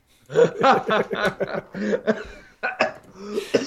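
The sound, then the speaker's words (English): A voice mimics a raspy, sputtering cough: strained, groaning vocal sounds broken by several sharp hacking bursts, fairly loud. “the dead guy in the corner, apparently, with the cough.”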